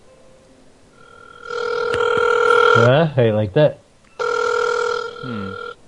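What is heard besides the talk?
phone ringtone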